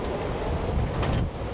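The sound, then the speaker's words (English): Steady wind blows outdoors in the rain, a continuous low rumbling gust buffeting the microphone, with a brief hissy swell near the end and no voices, heard from a sheltered spot by a rattling mural. “But it's just the least windy place to be.”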